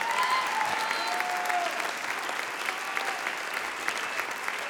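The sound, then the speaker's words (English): A large church audience claps steadily in dense, sustained applause as a praise to Jesus, with scattered cheers and whistles rising over the noise; there is no clear speech. “Come on, clap your hands and stand to your feet and say, yes, I receive breakthrough today.”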